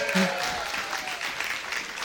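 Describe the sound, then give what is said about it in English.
A large church audience applauds steadily, a dense wash of many hands clapping at once that holds at an even, fairly loud level throughout, with no voices standing out. “But if you guys give him a round of applause.”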